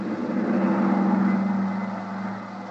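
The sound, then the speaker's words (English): A steady, droning engine roar from a large twin-engine private plane just airborne in flight, loud and continuous with a low, humming tone and no voices, holding level before easing slightly at the end. “and then, much to my surprise, took over as pilot of the huge private two-engine plane that was waiting for us. Within a few minutes, we were airborne and on our way.”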